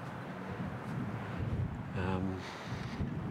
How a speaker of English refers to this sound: This breeze creates a ripple effect across the water. It's running really fast, the river.